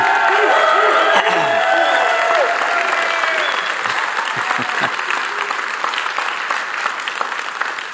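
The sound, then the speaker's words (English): A large standing audience at Celebration Church applauds and cheers loudly for the full eight seconds, a dense wash of clapping with scattered shouts and whoops rising above it, gradually easing slightly toward the end. “Anyway, so those of you standing and yelling here, recite together with me.”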